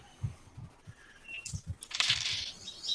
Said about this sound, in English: My dice roller isn't working. Now let's see. I hear it was made in Scandinavia. It is. I've made it myself.